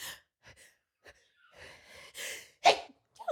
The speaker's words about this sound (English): It's because my sneezes are so ridiculous. I try and recover and I really quickly and I overcompensate with this like posh face.